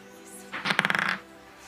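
Dice rattle and clatter across a hard surface in a quick burst of sharp, clear clicks lasting about half a second.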